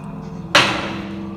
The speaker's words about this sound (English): After the woman tucked the brothers into bed, she closed the door.